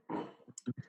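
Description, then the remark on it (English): A quick flurry of clicks on a PC keyboard as someone types to look something up, a dense clatter of keystrokes followed by three or four separate sharp taps, fairly quiet. “Fuck your keyboard.”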